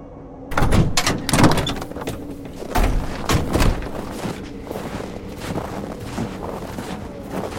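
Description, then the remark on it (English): A heavy pneumatic door, retrofitted with pneumatics and assembled mechanisms, grinds open with a series of loud clunks and hisses, followed by a steady low rumble and airy rushing as it settles, with no voices. “The doors and most of the other moving parts have been retrofit with pneumatics and other assembled mechanisms, as they're just too heavy to be managed by ordinary people.”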